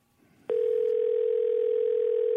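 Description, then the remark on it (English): A steady, loud telephone dial tone, heard while placing a phone call, switches on abruptly after a brief stretch of faint background noise and holds unbroken to the end. “So I'm going to get this guy on the phone right now,”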